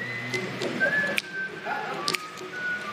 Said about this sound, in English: All right. Come on now. We got a little hum whistle going on.